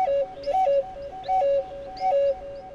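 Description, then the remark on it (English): A native musician plays a native flute for kids outside the American Indian Studies Museum in Washington: a slow, breathy melody of long held notes, stepping back and forth between two nearby pitches in short phrases, clear with no voices. “Kids sample a plate of strawberries outside the museum and listen to native musician … play a flute.”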